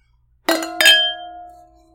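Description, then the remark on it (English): Two bright glass clinks close together, wine glasses touched in a toast during a red wine tasting, followed by a clear ringing tone that lingers and slowly fades. No one speaks. “Okay, well, let's cheers and try our wines. All right. Cheers. Cheers.”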